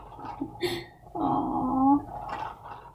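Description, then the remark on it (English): A wet slurping gurgle as someone sips a drink, with a short bubbly rush of liquid lasting about a second, followed by quieter mouth sounds. “I'm taking a sip right now.”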